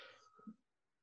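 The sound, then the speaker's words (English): A short, airy sniff or two through the nose as a person sniffs a stuffed bear, soft, fading into near silence after about half a second. No one speaks. “She's sniffing the bear, Kitty. She's sniffing the bear.”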